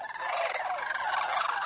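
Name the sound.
sandhill crane calls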